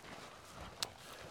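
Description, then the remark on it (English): More than two people walk over loose gravel along the Old Ghan Rail Line, their overlapping steps making a soft, continuous crunching, with one sharper click standing out. No one speaks. “Just for everyone's listening, there's certainly more than two sets of footsteps.”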